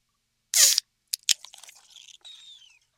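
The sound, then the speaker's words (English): A nitro beer can cracks open with a sharp, bright snap, followed by a couple of clicks and a softer, crackling fizz that trails off over about two seconds: a primary release of pressure, then a secondary release of nitro from the nitro widget inside the can. No one speaks. “So you notice how there was that crack, and then there was that secondary fizz.”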